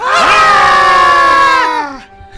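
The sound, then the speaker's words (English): A group of people screams together at a camera on a count of three, in one loud, sustained burst lasting about two seconds, voices overlapping before trailing off into near silence. “Everybody look at the camera and scream.”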